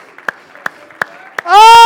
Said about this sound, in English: Somebody clap your hands and shout for just a moment. Somebody clap your hands and shout.